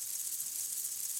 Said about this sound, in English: Locusts.